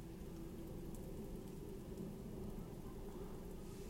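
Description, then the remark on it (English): A steady, low rumbling roar of an airplane passing overhead, continuous and even throughout, with no voices. “Oh, no, it's a plane.”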